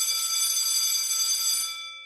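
A high school bell rings in one continuous, loud, metallic burst with a bright, buzzing tone, holding steady for almost two seconds before its ring fades out. No one speaks.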